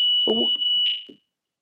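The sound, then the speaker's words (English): A building's fire alarm sounds a steady, piercing high-pitched tone that holds for about a second before cutting off, with a man's brief muffled speech underneath. “Sounds like my fire alarm's going off.”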